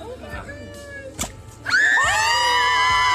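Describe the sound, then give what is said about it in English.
A crowd murmurs and a sharp bang or pop cuts through, then loud cheering with high-pitched shouts and screams erupts and holds steady as a Jell-O-filled watermelon tossed into the mouth of an alligator named Sally bursts, spraying blue goo. “after wrestling with an alligator named Sally, a watermelon filled with Jell-O was tossed into the alligator's mouth, one that burst quickly in her hauntingly primitive maw, spraying the blue goo to a chorus of cheers.”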